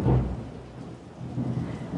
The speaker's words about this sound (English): I guess the thunderstorm decided to enter this intro with me. But yeah, it's raining.